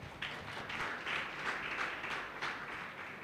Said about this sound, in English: Let's clap our hands for our Jesus.